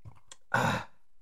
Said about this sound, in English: I'm going to take a sip. We're all sipping for this one.